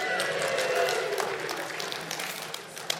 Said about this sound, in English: Let's hear a cheer from the crowd.